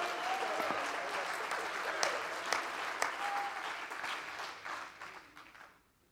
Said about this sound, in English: Oh, clap your hands to him right now.